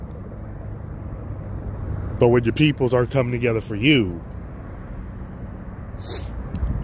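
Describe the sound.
A steady low rumble of a bus moving through traffic fills the background, with a man speaking briefly over it and a short sharp hiss near the end.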